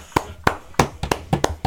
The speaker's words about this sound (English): So Riyad Mahrez this season, he's got 20 goals plus in all competitions, and for someone who doesn't even start every game, can we just like clap for Pep?